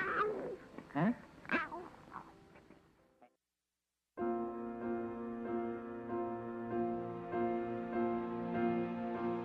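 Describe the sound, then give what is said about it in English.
Someone mimics a cat with a few quick, wavering meows, fairly loud, followed by a brief silence and then sustained, steady music. “How's the old kitty cat go?”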